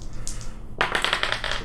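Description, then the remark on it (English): Dice rattle and clatter across a hard surface in a quick burst of sharp, bright clicks, fairly loud, with faint lighter taps before the main roll. “I'm just going to do my yes, do your dice.”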